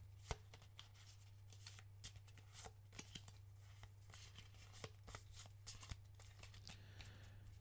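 Steady riffling of a deck of cards being shuffled, with quick papery flutters and sharp snaps repeating over several seconds, no voices, over a low constant hum.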